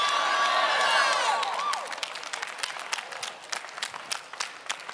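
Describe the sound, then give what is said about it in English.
A crowd screams and cheers with high, overlapping voices for a couple of seconds after a preacher asks them to scream if they know he's good. The shouting then fades into steady, loud applause with sharp, scattered claps. “If you know he's good, I need you to scream, now I know.”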